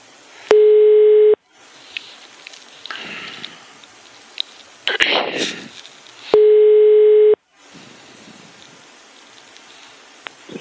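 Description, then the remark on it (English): Two long electronic ringback tones sound over a phone line during a call to the Swedish Tourist Association, each about a second long and roughly five seconds apart, with faint hissing line noise filling the gaps between rings. “dialed it to find out what was going on”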